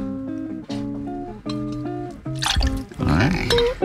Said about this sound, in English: 1 ounce of Cointreau per glass. About, maybe a little more. A little orange flavor. Mm-hmm. That goes directly into the glass.